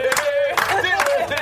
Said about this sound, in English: What we ought to end with is some tumultuous applause, possibly in the Austrian style. Yeah. All at the same time. All at the same time.